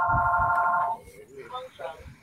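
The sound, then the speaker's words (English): A telephone rings loudly for about a second, a steady electronic trill, then stops as a voice begins talking over soft background noise. “I think that's Arthur Smith on the phone.”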